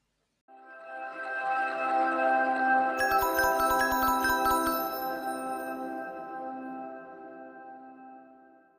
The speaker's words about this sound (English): It's chime time. You may have noticed that the sound there changed from the last couple of episodes. Let me know if you like this one better.